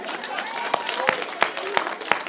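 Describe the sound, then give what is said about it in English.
A crowd applauds steadily, a dense wash of clapping with a few sharper, louder claps standing out at regular intervals, moderately loud. “Come on, let's clap.”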